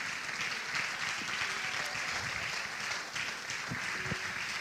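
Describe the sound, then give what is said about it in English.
A standing crowd claps steadily for several seconds in praise of the Lord, a dense, sustained wash of many hands applauding together, with no voices standing out. “Let's all stand to our feet and clap our hands and magnify the Lord.”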